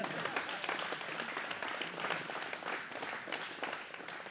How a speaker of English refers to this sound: Last week, I received word that a single donation of $250,000 is headed our way. You can clap for that.